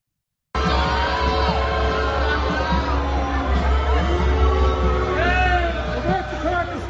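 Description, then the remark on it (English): A crowd waiting in line for a Trump rally in Richmond, Virginia, boos and shouts loudly and continuously at a passing truck carrying a Nikki Haley billboard, many overlapping voices rising and falling in long drawn-out jeers, over a steady low rumble. “Being booed while driving past a line for the Trump rally in Richmond, Virginia.”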